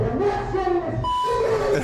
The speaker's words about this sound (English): I still don't know why it beeps out the first F word but leaves the second one. It's from the same clip. It doesn't make any sense.